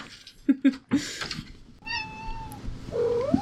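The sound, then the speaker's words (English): Luna, a pet cat, trills: a few quick chirpy bursts followed by a longer, rising and falling warbled call, with no talking over it. “Luna's singing. This chapter is about trilling, and she always trills, our cat Luna.”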